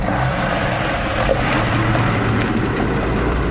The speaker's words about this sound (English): Here in Nueva Loja, in eastern Ecuador, close to the Colombian border, trucks hit the gravel roads 24 hours a day to speed up construction of an OCP pumping station.